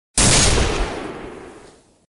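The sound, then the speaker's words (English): A salt gun is fired by a woman in a sewer, giving a single loud blast: a sharp, explosive crack that trails off into a long, fading roar over about two seconds, with no voices. “Then, his ankle twisted, sliding on the slick sewer ground, and he fell against Ruth, knocking back her aim just as she pulled the trigger.”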